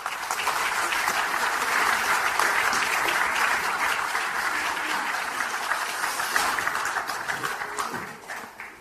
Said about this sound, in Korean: 이재명 당대표님 모셔서 인사 말씀을 듣도록 하겠습니다. 우리 위원장님 여러분 큰 박수로 격려해 주시기 바랍니다.